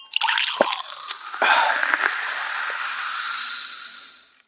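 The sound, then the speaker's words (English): Wet sipping of water from a cup, with a few short slurps and drip-like clicks over a steady airy hiss, then fading out. No one speaks. “Good old water. I'm fasting today, so I am hydrating, drinking my water.”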